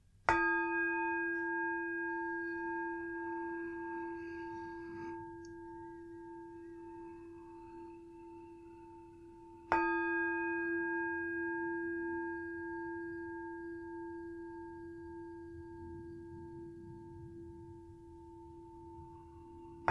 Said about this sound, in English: And we're going to do that right now with a metta loving kindness guided meditation. So if you want to just take a moment or two to make yourself comfortable, and we'll start with three sounds of the bell.